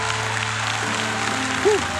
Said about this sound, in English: Come on and clap your hands in faith right now.